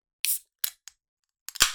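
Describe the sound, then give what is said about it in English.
A can of craft beer being slowly cracked open in a few sharp, bright snaps and clicks, ending in a louder pop with a brief hissing fizz trailing off. No voices. “Ooh, I feel like that was a nice slow crack.”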